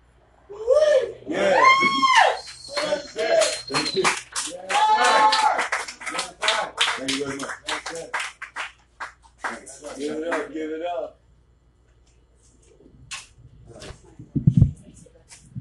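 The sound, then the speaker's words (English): An audience claps, quick sharp hand claps mixing with voices and excited vocal sounds for several seconds before fading into near silence, with a brief thump near the end. “Big round of applause”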